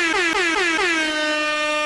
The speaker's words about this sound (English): Air horn, please.